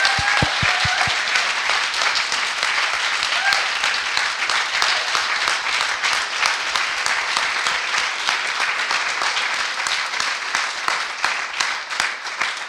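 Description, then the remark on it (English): An audience breaks into a sustained round of applause for two panellists at the close of a panel event. Many hands clap in a dense, steady wash that stays loud for the whole stretch, without any voices over it. “Can I have a whopper round of applause, please, for our two panellists?”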